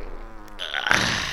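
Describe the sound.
A buzzy mouth noise like a blown raspberry, made by a man imitating a fart, starts after a brief quiet moment and holds steady for under a second, loud and wet, with no talking.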